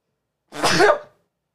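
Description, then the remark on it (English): A single sharp sneeze bursts out, a brief breathy blast lasting about half a second, with quiet before and after and no talking. “I had to sneeze.”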